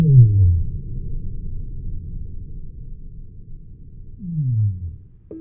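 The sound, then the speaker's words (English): Two deep whale calls, each a low moan sweeping downward in pitch, one at the start and another near the end, separated by a stretch of low rumbling background noise. “So if you hear these recordings, they're like, and we can barely not register the end of it.”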